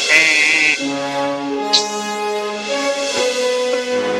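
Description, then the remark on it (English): The door buzzer of an apartment at 460 West 57th Street, New York, rings with a loud, raspy electronic drone that steps between several sustained pitches for about four seconds, with no voices over it. “Buzz my apartment, and I'll come down and let you in, and you'll hear the interruption in the podcast.”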